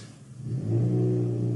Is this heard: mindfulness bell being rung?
no